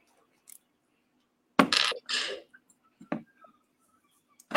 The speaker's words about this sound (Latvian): Šādi te var pieturēt ar vienu pirksti. Un tad vienkārši pievelkam skrūvs kārtīgi. Viena puse. Otra puse.